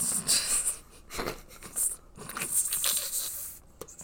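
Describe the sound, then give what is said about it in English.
Paper rustling and crinkling, a steady stream of irregular crackly bursts for several seconds with a brief pause midway, fairly quiet and without any talking. “So, like, ooh, this paper noise is gonna get real.”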